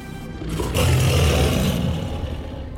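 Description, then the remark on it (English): A deep, rumbling growl from a beast with two yellowish glowing eyes rolls on for about two and a half seconds, swelling loudest in the middle before easing off, echoing through a cave. No one speaks. “A deep growl echoed throughout the cave as the eyes inched closer.”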